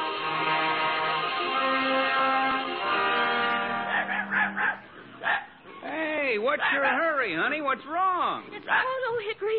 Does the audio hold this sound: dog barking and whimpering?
yes